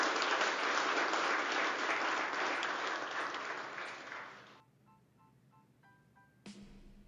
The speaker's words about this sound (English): Thank you. Let's give the panelists a round of applause.